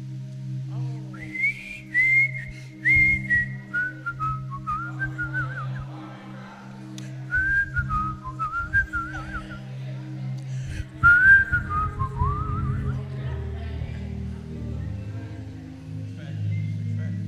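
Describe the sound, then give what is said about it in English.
A person whistles a flowing, sustained melody with rising and falling phrases, clear, over a steady low hum with some rumbling in the background. “I want to go back to, I can't call his name, but he didn't sing much. He whistled his song.”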